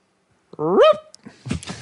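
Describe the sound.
A person imitates an elk's alarm blow: one short, rising, barking call followed by a breathy, huffing exhale.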